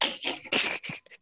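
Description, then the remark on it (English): A sneeze: a loud, breathy, hissing burst about a second long that breaks into a few rough gusts and fades quickly, with no talking. “Was that you sneezing?”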